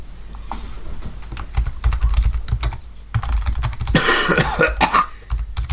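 A short burst of coughing rises over steady, clattering computer keyboard typing, fairly loud, with no one speaking.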